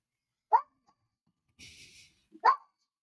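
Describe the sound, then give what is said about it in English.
A dog named Charlie Babbitt barks twice, two short sharp woofs about two seconds apart, with a brief breathy hiss between them and no one talking. “Well, it's Charlie Babbitt barking.”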